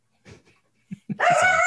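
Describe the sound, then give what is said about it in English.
A dog gives a few soft whimpers and two short, sharp barks, then breaks into a loud, high, drawn-out whine, with no one talking over it. “Your dog's calling cat.”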